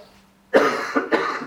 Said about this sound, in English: I'm sorry, I may cough.